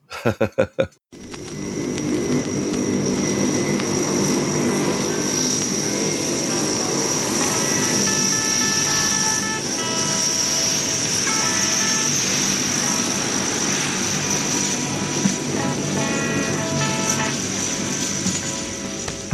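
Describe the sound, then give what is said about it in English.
A loud, steady whir of a vacuum cleaner in a recording studio, with a high whining tone, roaring on for nearly twenty seconds like a jet coming in to land, after a few brief thumps at the start. “It turns out it is the vacuum cleaner in the studio.”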